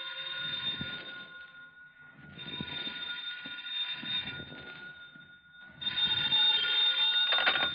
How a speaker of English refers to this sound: Then the phone rang.